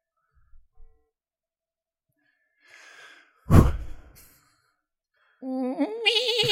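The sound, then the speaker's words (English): A voice imitates a goat, giving a loud, quavering bleat that wavers in pitch for about a second, after a short breathy huff and some quiet rustling. “It sounds like a fucking goat.”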